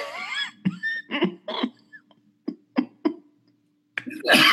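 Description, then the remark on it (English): A run of short, sharp coughs, several bursts in quick succession with brief pauses between, ending in a louder, harsher cough. “Bit of a cough.”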